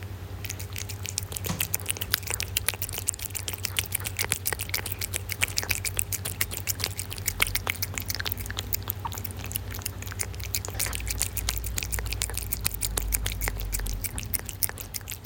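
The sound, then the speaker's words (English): Jeremy the cat licks and laps at cat yogurt, a steady run of quick wet clicks and smacks over a low constant hum, with no talking. “Would you like to hear him having some of his licky licks?”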